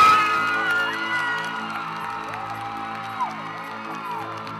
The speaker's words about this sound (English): Please give a warm round of applause for the one, the only,